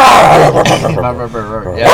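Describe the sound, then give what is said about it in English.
A man vocally imitates the revving of a supercharged car engine with a light flywheel, making loud, growling bursts that rise and fall in pitch over about two seconds, like quick throttle blips. “Like the flywheel is so light, so that's why it goes just woof, woof, like right.”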